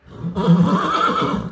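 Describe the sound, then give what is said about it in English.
A horse whinnies loudly, one shrill, wavering neigh lasting over a second, with no other sounds around it; horse-drawn cars on 3rd Avenue are being stopped and hijacked. “Meanwhile, horse-drawn cars on 3rd Avenue are stopped and hijacked.”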